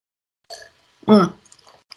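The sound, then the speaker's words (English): A short slurp of a drink is followed by a loud, voiced swallow or satisfied exhale, then a few faint clicks and smacks in otherwise quiet surroundings. “Let me take a sippy sip.”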